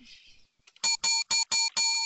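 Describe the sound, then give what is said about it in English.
A bell rings five times in quick succession, each strike loud, bright and metallic with a ringing tone, following a brief soft hiss and near silence. “That's like a five bell for you to get us out of here.”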